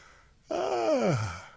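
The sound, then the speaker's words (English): A single deliberately faked yawn from one voice, rising then sliding downward in pitch over about a second, breathy and sighing, with no words spoken. “And then the other one is what I call cats and dogs, which is just yawn. If you'd have to fake it.”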